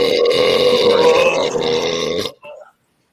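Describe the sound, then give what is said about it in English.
A long, loud, gravelly burp rumbles for over two seconds, then cuts off with a brief faint trailing sound before silence. “I got just a couple of dribbles, but like I said, I was talking about the burp.”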